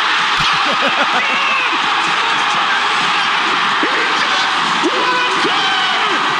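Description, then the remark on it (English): A large crowd cheers loudly, a dense, sustained roar of many voices with scattered shouts and whoops rising above it, holding steady for several seconds without a break, after a 94-foot putt wins a new car at an Auburn event. “You can hear the exact moment of yes way.”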